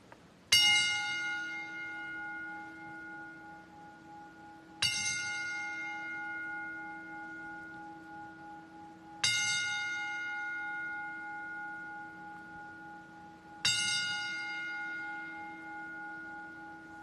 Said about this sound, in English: Ladies and gentlemen, please rise as we toll the bell 10 times to honor the memory of Brodie Lee.